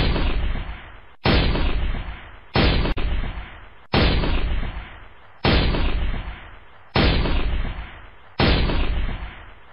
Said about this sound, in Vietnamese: Tôi vừa dướn người cua quào được một băng đạn M16 trên sàn xe thì đạn 12 ly 7 của địch từ xa ảo ảo bắn tới.